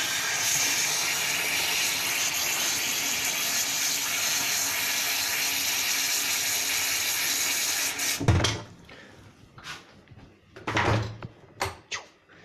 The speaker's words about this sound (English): Why everything is in the kitchen is brutally loud. Because the water heater is brutally loud.